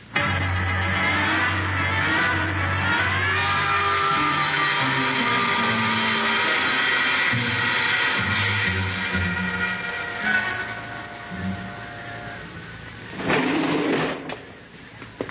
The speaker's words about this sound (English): There's a service elevator that leads to the basement garage.